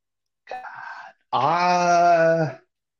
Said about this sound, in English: It's our only soundboard. Every time we play a dog, the beagle comes in.